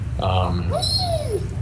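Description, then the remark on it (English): A dog whines, a short nasal cry followed by a thin, high-pitched whimper that rises and then slides downward, over a steady low background hum. “My dog's whining here.”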